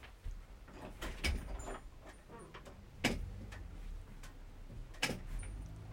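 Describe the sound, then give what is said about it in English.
A door is opened to let someone in, with a series of sharp clicks and knocks from the latch and frame spread over several seconds against a quiet background. “Could someone open the door so that they know that they're welcome?”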